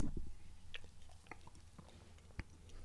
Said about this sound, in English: So now the first thing that comes to mind when I took a sip of this beer is that it's extremely smooth.